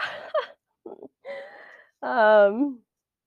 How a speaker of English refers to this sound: I actually don't feel tired, but yawning is not always a sign of tired. It's also a sign of purging.